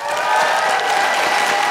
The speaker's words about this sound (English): Can I just say a huge, huge round of applause as well for Michael, our tour manager, and everyone here at the James Hay Theatre.